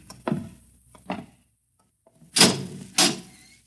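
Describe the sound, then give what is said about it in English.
A door inside a silo being worked open in pitch darkness with four knocking thuds: two softer bumps, a pause, then two louder, sharper clunks close together, with no voices. “Just a few steps up and another door.”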